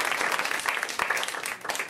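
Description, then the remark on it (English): A crowd applauds steadily, the dense patter of many hands clapping at once at a fairly loud, even level for a couple of seconds. “And you can clap for that.”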